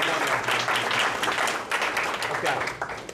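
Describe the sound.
An audience breaks into a steady round of applause, dense overlapping claps holding fairly loud for about three seconds before thinning slightly at the end, with some voices mixed in.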